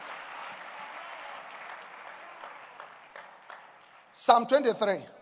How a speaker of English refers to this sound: Give the Lord a wonderful clap of hands.